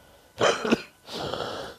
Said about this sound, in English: Sorry, smoker's cough. It's not corona.